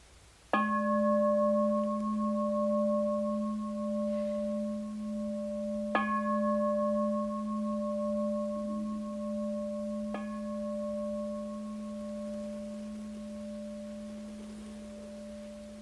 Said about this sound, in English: So the Buddha instructs us to notice, particularly if we want to, the appearing and disappearing of events, as in the sound of the bell now.